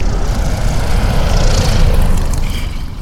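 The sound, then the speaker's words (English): A Tiger Moth biplane's propeller engine drones loudly and steadily, its low end chopping in a fast, even pulse beneath a broad airy roar, with no voices. “you're right, yeah, we just landed about 45 minutes ago in the Tiger Moth from White Wolf.”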